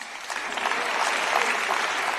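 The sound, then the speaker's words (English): Sustained applause from a large assembly, a dense steady patter of many hands clapping at once, fairly loud and even throughout with no voices standing out. “And there was quite a big applause to that.”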